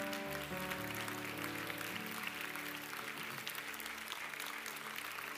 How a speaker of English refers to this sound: Can everybody clap their hands to Jesus?